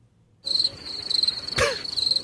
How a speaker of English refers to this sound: Can we get the slow down crickets? I looked for other cricket sounds. I mean, like, I spent a long time looking for other cricket sounds. That's a good one. That's what they sound like.